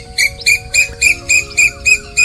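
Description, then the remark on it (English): An Asian koel in a tree outside a window shrieks at about 5:30 in the morning in a rapid, steady series of about eight harsh, high-pitched calls, each short and piercing, with a faint constant hum underneath and no talking. “The Asian coal that sleeps in the tree outside our window decides at 5:30, or a few minutes before, that it is high time for the world to wake up, and begins a series of frenzied shrieks.”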